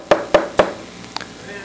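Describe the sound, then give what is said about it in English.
Three firm knocks on a door in a steady, evenly spaced rhythm, fairly loud, followed by a faint higher-pitched tap and quiet room tone. “Here I am, I stand at the door and knock.”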